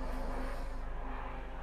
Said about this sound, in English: Morning, helicopter.